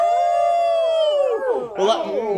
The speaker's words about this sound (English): I think we need a lightning dog's howl for that last part.